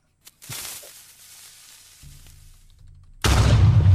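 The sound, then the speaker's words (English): A sound-effect explosion: a sharp blast that decays into a low rumble, followed by a second, louder burst of crackling roar near the end. No speech. “Play the explosion.”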